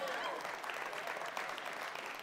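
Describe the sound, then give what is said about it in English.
An audience applauds in a steady, dense wash of clapping that holds at an even loudness for about two seconds without a break. “And he's clapping now.”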